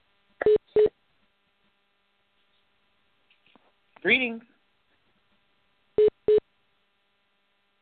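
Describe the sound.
Two quick paired electronic telephone beeps, steady and mid-pitched, sound at the start as a caller is connected on a program's phone line; a voice speaks a brief greeting; then another identical pair of beeps follows after a gap.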